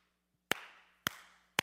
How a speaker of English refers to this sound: I used to be able to clap louder.